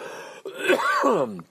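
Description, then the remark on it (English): A raspy bout of coughing: a short rough burst, a brief break, then a longer strained, throaty hack that rises and falls in pitch before trailing off. “Sorry about all that coughing.”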